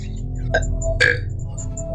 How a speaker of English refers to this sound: Excuse me. I apologize. I wish I could say I wasn't expecting that, but I knew it was coming. I had like a pre-burp before the first, like that one came.